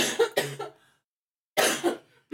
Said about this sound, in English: I have to cough. I am so sorry.